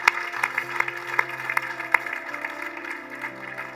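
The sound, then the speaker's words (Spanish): An audience applauds the Lord Jesus, a dense wash of many hands clapping with sharper claps landing in a steady beat, while soft sustained low tones hum underneath. No one speaks. “¿Por qué no volteas para acá y dale un aplauso fuerte al Señor Jesús?”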